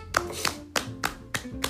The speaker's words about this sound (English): And first off, let's get a nice round of applause. Everyone get a nice clap.